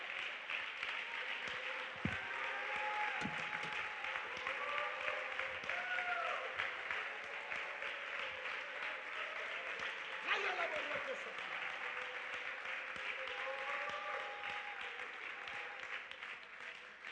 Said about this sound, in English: Dele un aplauso al Señor que vive en esta casa de Jehová. Somebody clap your hands, all ye people. Give a voice of praise in the house of the Lord.